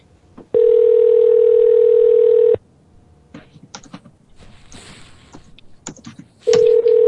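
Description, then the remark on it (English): A steady, loud telephone dial tone hums for about two seconds, then stops for a quick run of clicky button presses as the same number is called again, and the dial tone returns briefly at the end. “Can you call that same number just one more time?”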